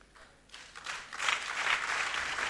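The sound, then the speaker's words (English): An audience at a sermon breaks into applause for Jesus, starting softly and swelling into steady, dense clapping from many hands that holds at a fairly quiet level with no voices over it. “If you're clapping at me, that's a good place to clap for Jesus.”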